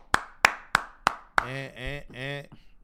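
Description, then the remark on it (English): Five sharp hand claps in a steady, even rhythm, about three per second, followed by a loud voice calling out over the last clap. “You gotta clap it up.”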